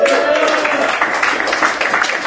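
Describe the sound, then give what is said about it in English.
Steady applause from a comedy show audience, answering how many pro wrestling fans are present, a dense wash of clapping with some crowd voices mixed in, holding at an even, fairly loud level for about two seconds. “By a round of applause, how many pro wrestling fans do we have in the audience tonight?”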